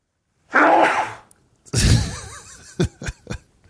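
A person sneezes loudly after a sharp intake of breath, then gives three quick, short sniffs. No talking.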